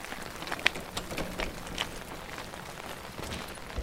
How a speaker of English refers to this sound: At least the rain's good for something. They may not hear us.